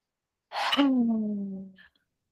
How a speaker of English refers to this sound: So you're going to inhale through your nose, and on the exhale, breathe it out through the back of your throat, making a high noise like you're a breathing dragon.